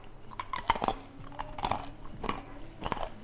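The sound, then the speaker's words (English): Crunchy chewing of candied macadamia nut clusters, with sharp, irregular crackling bites repeating every half second or so, loud with no talking. “Do you hear how crunchy that is?”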